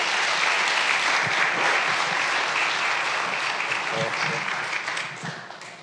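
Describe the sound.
A Spanish-speaking church audience applauds for their pastor in a dense, steady wash of clapping that holds strong for several seconds, with faint voices mixed in, before it begins to thin out and fade at the end.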